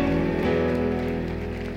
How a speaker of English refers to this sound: We can do better than that before we sit down. Let's give the Lord a rapturous clap offering.